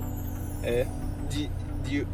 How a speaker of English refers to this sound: We're having a podcast in the car